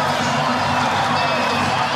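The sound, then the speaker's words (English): A stadium crowd in Auckland cheers for the Warriors after their win over the Newcastle Knights, a steady, dense roar, a loud unbroken wash of many voices with no single call or clap standing out. “If you don't know, or if you don't think a crowd can make a difference, you haven't been in an atmosphere like this.”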